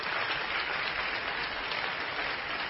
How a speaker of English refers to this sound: If you think it's worth it, I want you to give the Lord a praise offering right now. Just clap your hands.